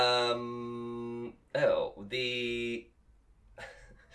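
A dog in West Hollywood gives loud, drawn-out calls that sound like a rooster crowing: a long held cry, a short sliding yelp, another sustained note, then fainter sounds trailing off.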